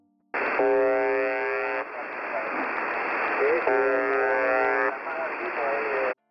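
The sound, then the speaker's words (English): Russian shortwave numbers station broadcast through heavy radio static, with two long bursts of a harsh droning buzz. Faint voices of a background conversation come through between the buzzes from an open microphone. “In this example from Russian station UVB-76, you can overhear a conversation in the background.”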